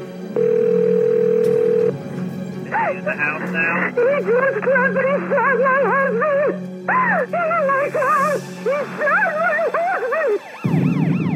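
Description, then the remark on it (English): A phone line goes dead on a 911 emergency call: a steady, flat dial tone hums for about two seconds, then gives way to a long stretch of loud, wavering, howl-like tones that rise and fall, ending in a low muffled rumble. “For added authenticity, she lets the line go dead, and I really like it.”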